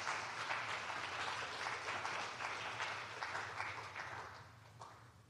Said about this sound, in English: So can we give her a big round of applause